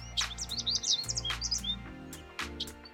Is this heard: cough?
no